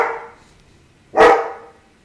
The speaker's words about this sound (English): this is Emmy, 100-pound Akita. Okay? So when she barks, that's it.